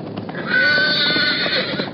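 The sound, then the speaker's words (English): A roan horse, its hip speared by a splinter from a lightning-struck pine tree, lets out a loud, shrill, strained whinny that rises sharply after a brief pause and holds for over a second, sounding agitated and pained, with no voices. “One of them speared the hip of the roan horse.”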